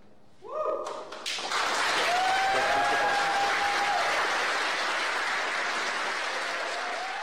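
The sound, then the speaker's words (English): A burst of applause breaks out from a crowd in a mission control room after the Electron rocket's main engine cutoff and stage separation, loud and sustained, with scattered cheers and whoops rising over dense clapping that carries on for several seconds. “As you just saw and probably heard from the applause, we have had main engine cutoffs.”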